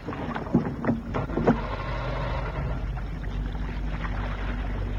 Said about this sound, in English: Hey, it's 11 and I have to pilot this boat back to harbor. Aye, aye, skipper. I'll start the outboard motor.